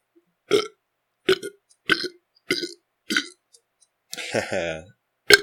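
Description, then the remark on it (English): A rapid series of short, loud burps from a person drinking carbonated water, about six in quick succession at roughly half-second intervals, with one longer, drawn-out belch near the end, and no talking. “Couple burps for you, drinking carbonated water.”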